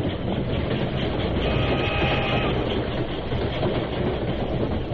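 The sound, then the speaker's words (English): A steam train rumbles steadily past, a dense, continuous roar of wheels and rail noise with a faint rhythmic clatter and a hiss of steam on top, no voices. “His shout was lost in the rumbling of the wheels and the hissing of steam.”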